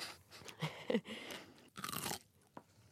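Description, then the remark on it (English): Loud crunching bites of a crisp, juicy pickle eaten as a snack at home, with several wet snapping chews over a few seconds and no talking. “It's a pickle.”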